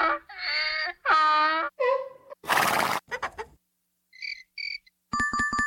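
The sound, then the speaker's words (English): In a sound-guessing game, short bursts of cricket chirping, two quick chirps and then a rapid pulsing trill, follow louder horse-like whinnying calls and a brief noisy rush, with no talking. “Sound is cricket.”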